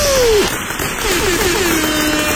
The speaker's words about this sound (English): We just want to do a minute of this for you nurses. Everything you do for us. There you go. Yeah. Nice round of applause and some other stuff.